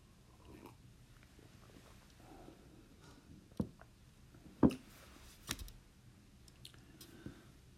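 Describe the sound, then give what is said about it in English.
Someone takes a few quiet sips of tea, with short wet slurps and small clinks spread over several seconds against a low, steady background and no talking. “I'm going to take a sip of tea first.”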